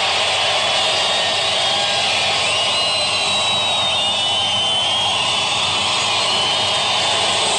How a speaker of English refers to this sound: Listen to those cheers. Fantastic. Standing ovation for the commander-in-chief.